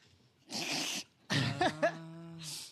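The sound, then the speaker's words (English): A pet dog barks a few times in short, sharp bursts, some rough and noisy, a couple with a yelping pitch drop, with no one talking. “Sorry, there was a dog that just started barking.”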